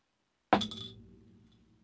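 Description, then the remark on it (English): A single sharp clink of a glass soda bottle, fairly loud, its bright ring fading over about a second amid quiet. “What is the point of the glass? Well, you don't open it like that.”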